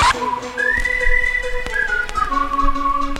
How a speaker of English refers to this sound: I love the air whistles in it.